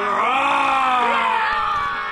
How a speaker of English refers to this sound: And on the count of three, one, two, three. The boys lift their glasses of sparkling cider and growl.